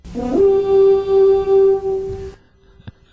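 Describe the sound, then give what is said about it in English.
A single loud, deep blast of the Vikings' big stadium horn holds steady for about two seconds with a rich droning tone, then cuts off, leaving near silence and a couple of faint clicks. “the Vikings have that annoying guy that has that big horn that they play all the time.”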